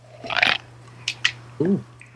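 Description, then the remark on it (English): A short, hissing, gurgly slurp of a straw sucking air at the bottom of a nearly empty iced drink, followed by two quick clicks and a brief squeaky rasp. “That sounded like a very empty drink.”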